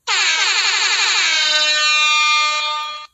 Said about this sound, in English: Let me sound this alarm.